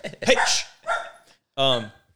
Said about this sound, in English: Sorry, my dog is barking.